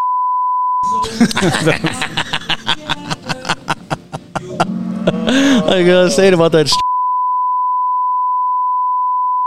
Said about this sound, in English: Definitely a beep. Beep, beep, beep.